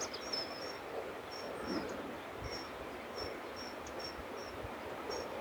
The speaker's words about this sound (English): I can hear the river.